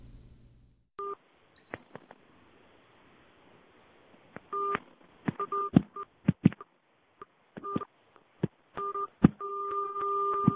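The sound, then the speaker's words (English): A voicemail holding a run of short electronic two-tone beeps in an uneven, Morse-like rhythm, mixed with sharp clicks and ending in a longer sustained tone over a faint hiss. No one speaks. “Whoa, was that Morse code?”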